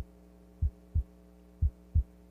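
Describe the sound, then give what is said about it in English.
Two loud heartbeats, each a deep double thump, land about a second apart over a steady low electrical hum, with no voices present. “And the young man began to hear the old man's heartbeat. It was loud.”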